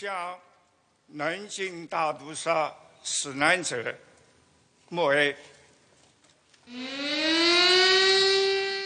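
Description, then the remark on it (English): A person talks, then a loud air raid siren starts up across Nanjing, China, during a minute's silence at a national ceremony marking the 84th anniversary of the Nanjing massacre, rising in pitch into a steady, sustained wail that fills the final couple of seconds. “Those attending the ceremony observed a minute's silence while sirens blared in the city.”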